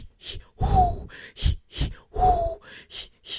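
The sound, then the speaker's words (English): Someone does a heavy breathing exercise: about seven loud, rhythmic breaths in and out in quick succession, some with a slight voiced gasp, and no talking. “Look, I've been doing my breathing exercise.”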